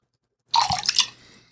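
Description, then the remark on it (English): A short pour of mulled wine (glühwein), a quick splashing gush of liquid into a glass saucepan that settles into a soft trickle and fades out, with no one talking. “For those who are listening to the podcast later, I have just poured the glue wine, which has no glue in it, as far as I know, into the saucepan.”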